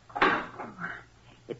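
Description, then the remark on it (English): A heavy metal furnace door clanks shut, a sharp ringing bang followed by a brief grating scrape and a softer knock as it settles. “Take this slice bar and open the furnace door”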